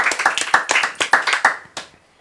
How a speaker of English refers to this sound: Clap it up for him, everybody.